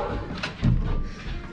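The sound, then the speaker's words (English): Muffled, low thuds and bumps from overhead as dogs run loose upstairs: a few irregular heavy knocks over a dull rumble, fairly faint, with no one talking. “Them dogs running loose up there.”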